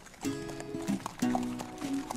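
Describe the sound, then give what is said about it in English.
A thoroughbred horse being led back up to its paddock, hooves clip-clopping at a walking pace, several sharp knocks at an uneven rhythm, over a steady humming tone in the background. “He's just starting to get wired up now, but we'll try and get him back up to his paddock in case he get hurt.”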